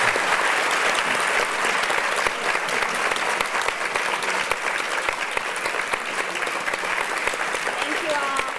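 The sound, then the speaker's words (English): Sustained, loud applause from a large audience for a panel of speakers at Spotlight Health, Aspen Ideas Festival, recorded live on June 27, 2015. A dense steady patter of clapping holds at an even level throughout without pause, with faint crowd murmur beneath. “Can we give them a huge round of applause?”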